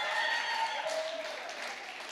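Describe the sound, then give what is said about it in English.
A crowd applauds and cheers steadily, dense clapping mixed with a few whoops and raised voices, sustained at a fairly even loudness for a couple of seconds. “Come on, cheer.”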